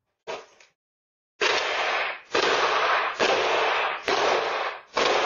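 A woman kicks in a door, recorded by a Ring doorbell camera: one short bang, a pause, then four heavy, booming blows in close succession, each loud and harsh with a crashing, noisy tail. No voices.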